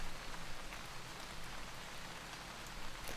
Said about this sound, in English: I'll leave you with a few extra moments of peaceful rain, because as we move into spring, I want you to remember this is the time of rebirth, and that rebirth only comes after the rain.